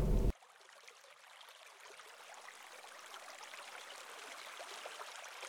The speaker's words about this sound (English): you suddenly hear water rushing, but it wasn't from the rain